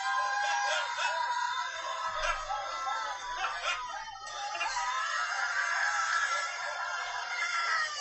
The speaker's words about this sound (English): They're touching each other, and what they call that is imparting a spiritual gift. And these people start screaming like they're demon-possessed. Look at this. Just watch.